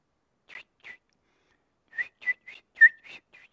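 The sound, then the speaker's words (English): A person whistles an imitation of baby chicks peeping: about nine short, high chirps, a pair first, then a pause and a quicker run of seven. The whistling is fairly faint, with no talking. “When I had chickens, I had baby chickens, and little chicks go.”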